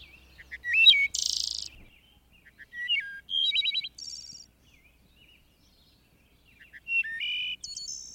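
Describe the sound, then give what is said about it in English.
A wood thrush sings alone on the 1st of May in the Rock Creek or Piney Branch region, in a few clear, flute-like phrases, each ending in a bright trill, separated by pauses, with a faint low rumble at the start. “On the 1st of May, I go to the Rock Creek or Piney Branch region to hear the wood thrush.”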